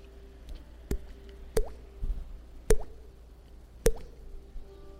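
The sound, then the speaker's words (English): Four separate raindrops land one by one at uneven intervals, each a crisp plop with a quick rising ping, over a soft steady hum and no talking. “The raindrops come.”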